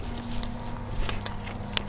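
Footsteps crunch along a winding, overgrown path at the back of an allotment, into scrub overgrown with brambles: a few irregular steps with crisp, rustling high-pitched crackles as they brush through dry vegetation, over a low steady hum.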